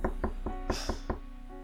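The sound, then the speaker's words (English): A rapid series of about six firm knocks on a door, evenly spaced, followed by a short quiet stretch with faint background hum. “open the door! We can talk about this!”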